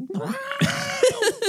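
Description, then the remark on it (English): A voice imitates the creature Scrimboga shrieking in pain after a crystal is driven into its eyes, a strained, wavering high-pitched wail with gargly breaks, rising and falling over about a second and a half. “What does Scrimboga sound like when it screams in pain?”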